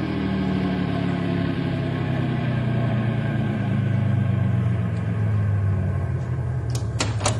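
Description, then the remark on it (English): A car engine rumbles steadily, its low drone gradually dropping in pitch as the vehicle slows to a stop, with a couple of sharp clicks near the end. “When I give the word, Sam, stop the car gently and everybody out.”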